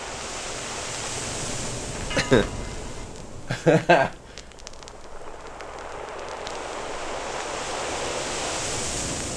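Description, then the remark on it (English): Ocean waves surge in a steady, hissing roar that swells and recedes, played from a record, broken early on by a couple of loud, scratchy crackling bursts of record scratches before the surf continues alone. “Boy, the scratches are kind of outmaneuvering the waves here.”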